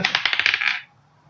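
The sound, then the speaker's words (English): A twenty-sided die clatters across a hard tabletop in a quick burst of sharp clicks that tumble and settle within a second, followed by quiet; it is rolled for a tech use check. “Someone else roll a dice.”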